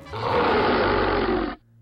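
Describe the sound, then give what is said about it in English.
A wolfman monster's deep, loud growl swells in and holds steady for about a second and a half, rough and rumbling with a harsh, throaty texture, then cuts off abruptly. No voices. “Something growled. Kyle turned, saw the wolfman crouched at the end of the car.”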